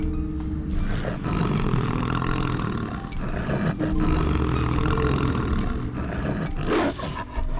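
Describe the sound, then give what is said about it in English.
An enormous wolf, its body scarred and bleeding from a fresh wound, growls deeply and menacingly in a crypt: a loud, rumbling snarl that carries on almost without pause for several seconds, with only brief catches of breath. “The enormous wolf had entered the crypt behind me.”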